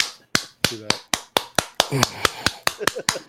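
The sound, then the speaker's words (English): A slow clap: roughly a dozen sharp, crisp claps at a steady, even pace, with voices talking underneath between the hits. “That is the slow clap, bro.”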